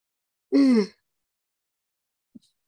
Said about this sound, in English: Excuse me. Stop yawning because you're going to make me yawn. Sorry.